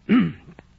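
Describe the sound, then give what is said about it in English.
A short, throaty cough, followed quickly by a softer, clipped second cough, with no talking around them. “I coughed twice.”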